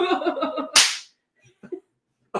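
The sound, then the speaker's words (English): Birthday spankings given on camera: a single sharp, loud slap on the body lands right after a drawn-out vocal sound, its crack ringing briefly before a few faint soft noises and another quick hit at the end. “I'll use Izzy's paw. It can't hurt nearly as bad as your hand. That bitch can slap.”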